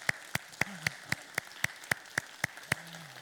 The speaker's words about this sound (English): So let's applaud and honor these people for doing that.